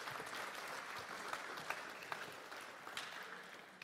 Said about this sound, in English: Can we give these boys a huge round of applause? Thank you so much for being up here.